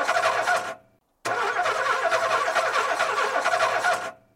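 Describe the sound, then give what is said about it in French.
A broken-down car's engine cranks and sputters without catching, a short attempt, a brief pause, then a longer grinding try that cuts off, loud with no voices. “Ce matin, je veux faire des courses, mais ma voiture est en panne.”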